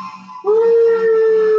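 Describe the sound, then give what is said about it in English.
A male dog lets out a loud, sustained howl at a fire truck sound played by Alexa, starting after a brief quieter moment with a slight upward slide, then holding a steady pitch until the end. “So my dog howls when fire trucks.”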